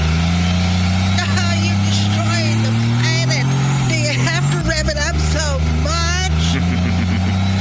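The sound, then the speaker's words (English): A diesel truck engine runs steadily at idle while being used to charge a car, a loud, continuous low rumble held for the whole stretch, with voices faintly audible over the drone. “This diesel truck can charge your vehicle, and we need to get your pink Mary Kay car back to your mom before she wakes up.”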